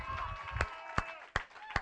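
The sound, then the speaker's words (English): A standing audience claps in unison as a hand clap of praise to Jesus, four sharp, loud claps landing in a steady beat over a busy background of crowd noise and music-like hum. “If you believe in that, Jesus, would you stand to your feet and give the King of Kings, the Lord of Lords, a great big hand clap of praise.”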